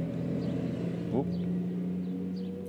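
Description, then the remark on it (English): A steady engine rumble of street traffic with buses idling and passing on a summer's day, with a brief rising whine midway and faint bird chirps scattered above the drone. “Traffic. We've got birds.”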